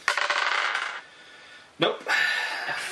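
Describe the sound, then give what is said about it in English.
Dice rattle and clatter across a hard tabletop in two close bursts: a second of bright skittering, a pause, then a sharp knock followed by more rolling. “What did you just roll?”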